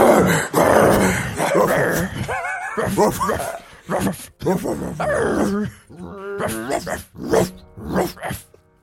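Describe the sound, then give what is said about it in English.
Several voices mimic a pack of dogs for about 10 seconds, loud, with a busy stretch of overlapping barks, yips, whines and groans that thins into separate yelps spaced out toward the end. “I thought we were just going to put in like a library sound of dogs barking.”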